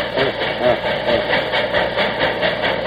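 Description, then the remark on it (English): An 1855 locomotive labors up a grade with a steady, rhythmic chugging, about three beats a second, loud over a constant low engine rumble, with no voices. “Now she's going up a grade.”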